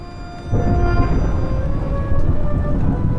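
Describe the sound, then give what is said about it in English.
After a brief quiet moment, a loud, dense wash of heavy rain sets in over a deep rumble of thunder and continues steadily to the end, with faint sustained tones underneath. “It was a dark and stormy night.”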